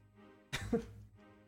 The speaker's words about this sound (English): Dupe hears Jotra cough again.